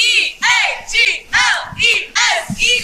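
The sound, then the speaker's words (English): A group of girls' voices from the Eagle cheer squad chanting loudly in unison, about five strong shouted bursts in a steady rhythm with brief pauses between. “You guys going to give us a chant?”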